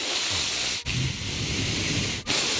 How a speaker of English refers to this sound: Who can do noisy breathing?